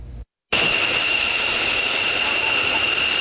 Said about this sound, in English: This is called the elephant walk, where fighter jets line up in a close V formation and taxi down the runway. 12 newly commissioned F-16V fighter jets performed a maneuver on Wednesday at Jai Air Base as part of public exercises